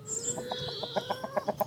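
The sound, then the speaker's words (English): Chickens in a chicken run cluck in a quick run of short, rhythmic notes as someone is about to go through the gate to feed them, with a higher bird call or squawk drifting over the top near the start. “And I'm about to head through the gate and in to feed the chickens.”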